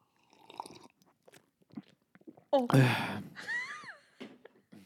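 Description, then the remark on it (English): Soft mouth clicks lead into a loud slurping sip of a drink, followed by a breathy, satisfied vocal sigh that glides up and down in pitch. “That first sip feeling.”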